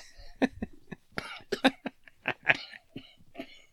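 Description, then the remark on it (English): A fit of harsh, rapid coughing, about a dozen sharp bursts in quick succession with a few gasping breaths and throat rasps between them, caused by beer going down the wrong pipe. “Excuse me, I got some beer down the wrong pipe there.”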